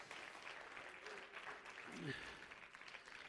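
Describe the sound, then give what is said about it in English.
An audience claps their hands in praise to Jesus, a dense, steady wash of applause, with voices cheering and calling out underneath throughout. “Clap your hands one more time, and let's give up some praise to Jesus.”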